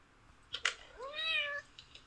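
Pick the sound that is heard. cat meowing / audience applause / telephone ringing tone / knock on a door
cat meowing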